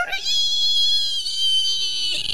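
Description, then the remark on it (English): A voice imitates a car skidding under hard braking: one sustained, high, strained screech with steady harmonics, held loudly for about two seconds before cutting off. “That's what it sounds like when a car slides and you're trying to hit the brakes at the same time.”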